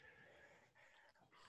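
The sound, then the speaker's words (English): A newly picked-up female Cane Corso puppy whimpers and yips in short, high-pitched bursts, with soft whining between the sounds and no talking. “For those of you listening, Logan just went to go get his new puppy.”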